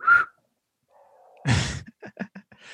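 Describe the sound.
A brief, breathy single whistle, clumsy and airy rather than clean, followed by a faint low hum and a burst of other noisy vocal sounds.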